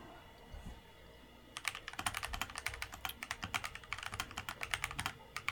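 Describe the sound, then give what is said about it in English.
Rapid typing on a mechanical keyboard with Kyle Purple linear switches: after a quiet second or so, a dense, steady stream of crisp key clacks carries on to the end, with no voices. “That's actually what I have in my keyboard. I have Kyle Purples, and they're linear, and they're great, and they sound good”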